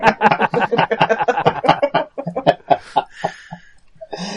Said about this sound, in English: So you, strange bird in the distance. Yes, indeed. So you. No, no, she's just small. She's not actually that far away.